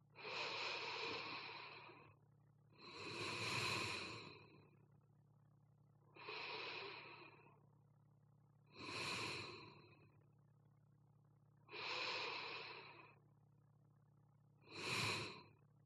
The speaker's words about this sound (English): And now just say I, breathing in, I, exhaling out. Three times.